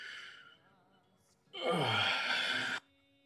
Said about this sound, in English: And you hear this large kind of creaking as his hands drop to the side.